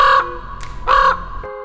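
A bird calls loudly, two harsh, drawn-out cries separated by a brief higher note, with no one speaking.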